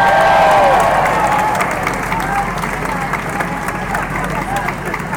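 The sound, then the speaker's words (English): A crowd at a religious gathering applauds steadily to praise God for a beautiful day, with dense, rapid clapping mixed with cheers and a hubbub of voices, loud at the start and easing slightly over five seconds. “Let's praise God and give him a round of applause for this beautiful day.”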